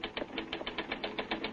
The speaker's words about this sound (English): Get that typewriter. Huh? Start pounding out a lead. Come on, snap into it.